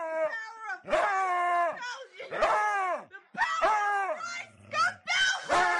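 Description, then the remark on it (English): A dog howls and yowls back in long, wavering cries, trading loud bursts with a girl who holds a cross and shouts at it, "May the power of Christ compel you," in a back-and-forth exchange. “This week, it's the video is the girl has a cross and she's yelling at her dog, "May the power of Christ compel you." And her dog's yelling at her.”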